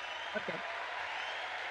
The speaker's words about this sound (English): You could talk when people are clapping. Yeah. They're just clapping at us.